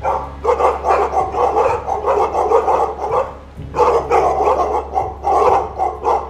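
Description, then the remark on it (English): A loud, dense chorus of many sled dogs baying and barking at once from inside a short hut, overlapping howls and yelps with a brief lull midway before the racket resumes, no voices. “Because a cacophony of baying and barking issues from the hut.”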